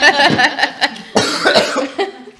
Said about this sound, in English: Oh God, that made me cough.